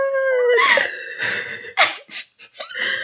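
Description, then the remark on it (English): A dog howls in a drawn-out, wavering wail that slides downward, followed by a few short, sharp vocal bursts, moderately loud with no talking. “Sorry to that dog.”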